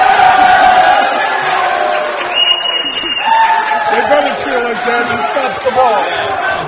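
An audience cheers and applauds loudly and steadily for a guest, with shouts and whoops rising over the clapping, and a brief high whistle partway through before the cheering carries on.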